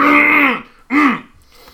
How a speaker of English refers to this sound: clearing her throat.